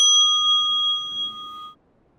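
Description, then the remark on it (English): A single mindfulness bell is struck once, ringing with clear sustained tones that hold steadily before the sound cuts off after under two seconds. The ring is fairly loud, with no voices. “I'm going to stop for a moment and take a little bit of a breath with the bell.”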